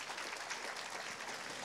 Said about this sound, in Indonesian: Tepuk tangan bagi Allah kita.